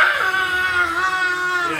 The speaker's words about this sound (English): More like the screams of children tearing apart an unsuspecting adult. You know that very familiar scream. It's the screams of children battle cry.